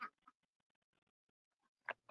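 Ducks quack at a duck coop in a loose, uneven chorus: a couple of loud, harsh quacks at the start and a strong burst near the end, with softer scattered calls in between.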